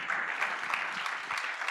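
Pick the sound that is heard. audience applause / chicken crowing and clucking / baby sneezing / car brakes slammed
audience applause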